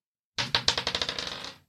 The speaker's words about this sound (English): Can you roll the encounter die for yourself?